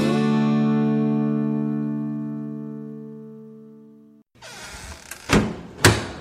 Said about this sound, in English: We've pulled the door closed on this episode of The Shed Wireless